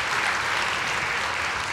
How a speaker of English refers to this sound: And while you're clapping, how about a big hand clap for all the parents who've endured online education?